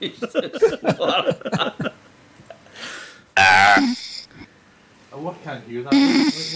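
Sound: person snoring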